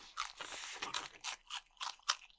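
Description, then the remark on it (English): Loud crunching of crispy breaded fried chicken being bitten and chewed, a rapid series of crackly bursts with short pauses between bites. “Like, it is making the, like, stereotypical munchy, crunchy food sound.”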